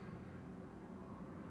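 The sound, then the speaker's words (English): A steady, low roaring rumble of a loud airplane flying overhead outside a window, muffled, holding an even level without any voices. “That's a really loud plane that's going flying outside my window there.”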